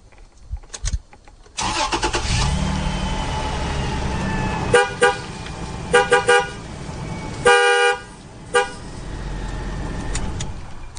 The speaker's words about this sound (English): That was my truck starting and the horn honking. You could have written down it was a car too, but pretty much a car or a truck starting up and the horn honking.